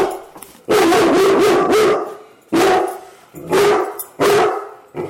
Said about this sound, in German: Wundern Sie sich bitte nicht, meine Damen und Herren, über dieses Bellen. Wir haben keinen Hund im Studio. Das ist das Bellen, das man seit kurzem in ganz Polen mit zitternden Knien vernehmen kann. Es ist das Bellen eines Kettenhundes.